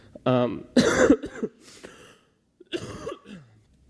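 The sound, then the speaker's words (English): A person coughs several times, a few harsh, loud bursts separated by short pauses, with a brief throaty rasp between them and no talking. “I'm really sorry about my cough.”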